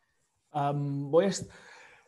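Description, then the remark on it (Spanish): One fairly loud sneeze: a drawn-out voiced 'ahh' build-up followed by a sharp, breathy burst, then a brief fading exhale. “Voy a estornudar.”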